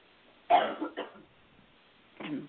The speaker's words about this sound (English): And I'm just going to clear my throat 1 second.